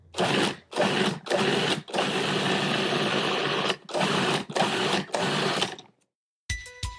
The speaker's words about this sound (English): That is the sound of a food processor.